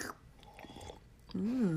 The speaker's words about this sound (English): I went to go drink. Let them listen to you sip your water.